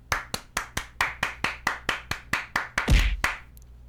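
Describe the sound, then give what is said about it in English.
One person claps steadily, about a dozen sharp, evenly spaced claps at a brisk pace, ending in a louder, thumpier clap and a brief scuffle. There's no talking. “I was clapping for him. You know, it was applause.”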